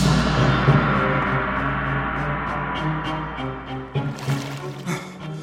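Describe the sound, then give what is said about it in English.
Foul water drawn from a well pours out of a pail in a steady, rushing stream for several seconds, then breaks into a few splashy gushes and drips as the flow tapers off, with no talking. “Well's about empty now, sir. That's about all we can take out with the pail.”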